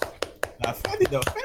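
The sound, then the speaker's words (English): A steady run of about eight sharp hand claps, evenly spaced and fairly quick, with people talking over the second half of the claps. “Like, can we get a clap here?”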